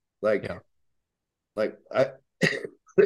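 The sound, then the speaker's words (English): A loud series of short, rough coughs and throat-clearing bursts from a person with a cough, about four or five in uneven clusters separated by brief pauses, with no words spoken. “I start talking about it, I start coughing. I got this fucking cough.”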